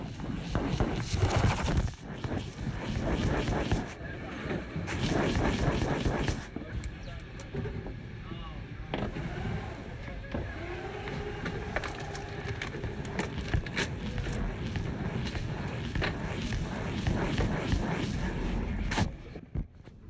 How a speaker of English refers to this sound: Dump all your belongings into a gray tub and send it through the scanner. If you've ever wanted to hear inside a security scanner, here's your chance.